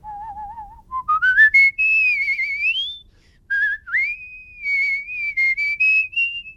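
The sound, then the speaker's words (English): A musical whistler, a whistling champion, whistles a melodic tune with sliding pitches, trills and wavering notes in two phrases separated by a short pause, clear and bright with no talking. “I am a whistler, a musical whistler.”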